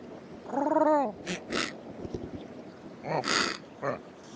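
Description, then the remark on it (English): Penguins call: a loud, wavering braying cry followed by several harsh, breathy snorting bursts, with a low rumbling background between calls and no voices. “Those penguins, bad sound.”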